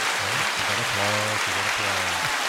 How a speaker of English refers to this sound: I think this whole thing deserves some applause.